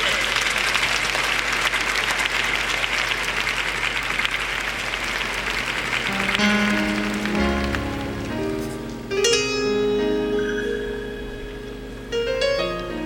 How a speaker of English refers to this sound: Come on, clap your hands and give the Lord some praise.